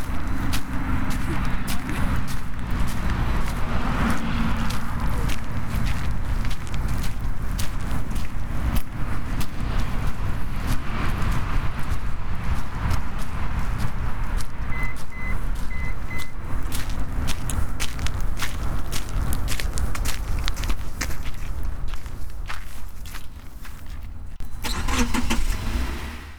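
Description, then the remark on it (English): Footsteps walk toward a car amid a steady rumble, with keys jangling and a few short beeps, then the engine starts up loudly near the end, as a family heads back to the car to return to the city. “Returning to my family, we head back to the car, back into the city, but also back into the world, with more adventures waiting to be had.”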